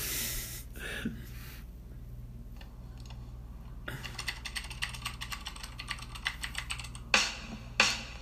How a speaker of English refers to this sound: I'm typing on my resume.